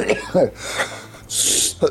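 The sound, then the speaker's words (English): Someone coughs and splutters in a few short, rough bursts, ending with a longer, harsh, breathy hack before a final grunt. The bursts are fairly loud, with no speech between them. “Today's topic is me coughing.”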